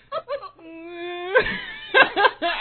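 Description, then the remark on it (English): A voice imitates a whale call with a long, steady moaning tone that drifts slightly upward, after a couple of short vocal bursts. Laughter breaks out in loud bursts right after. “Wait a minute, make a whale noise. Make a whale noise right now.”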